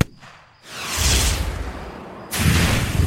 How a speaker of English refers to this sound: Another explosion and I flew backwards, tumbling over shrubs and rocks.